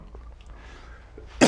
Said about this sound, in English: He's coughing and I'm not. But I'm gonna start coughing any second now.